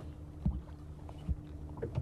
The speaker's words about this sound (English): There's an engine. Yeah, there's a boat coming away down the lake now from... Yeah, I can see it in just in the dim distance there. It's coming down from Inchigill. Someone's been fishing on Inchigill.